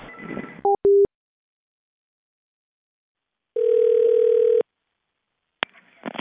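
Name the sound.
telephone line tone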